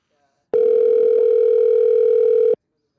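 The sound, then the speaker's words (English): A single steady ringback tone over a phone line, lasting about two seconds before cutting off, loud and clear with nothing else around it, as a call to the toy department of the Wooddale Target Store rings unanswered. “I'm going to call back and ask for guest service because they should answer the phone.”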